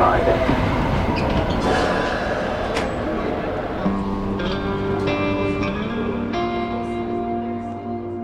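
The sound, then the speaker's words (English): A Metrolink light rail commuter train in St. Louis, Missouri runs steadily, fairly loud, its rumble and rattling wheels joined midway by a rising electric whine and faint squeals. Muffled voices murmur underneath. “To get to the Illinois clinic, it's a 10-minute walk, and then a Metrolink train, and then a bus.”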